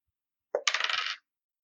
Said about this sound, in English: All right, so this is going to be tricky, but I don't want you to botch it, so I'm just going to give you a straight roll. Oh, okay. I'm going to roll a physical dice for this.